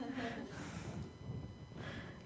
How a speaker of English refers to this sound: Is that me moving? Is that me breathing?